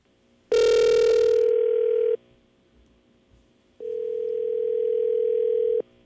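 A phone call ringing out: two long, steady, mid-pitched ringback tones separated by a short pause, loud and alone with no voices.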